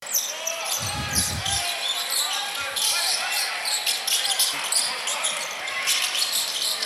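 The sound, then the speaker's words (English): Sneakers squeak against a basketball court during a televised game, picked up by courtside broadcast microphones, in a dense, continuous flurry of sharp, high-pitched chirps, with a single low thump of a bouncing ball early on and a murmur of activity underneath. “Squeaky fucking courts.”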